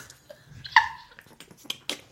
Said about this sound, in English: Just snorted. Oh, my God, I really laughed at that. I just snorted.